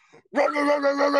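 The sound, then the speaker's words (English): A single loud, drawn-out dog bark rings out, holding its strained, tonal pitch for nearly a second after a faint, brief lead-in. “Troy Weaver got that dog in him”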